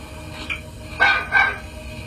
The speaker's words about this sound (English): You'll hear here the whistling, first of all, and then the barking. Here is this. Barking here is quite extraordinary, actually.